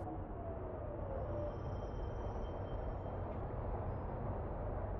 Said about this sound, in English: Anyway, there's the fucking train.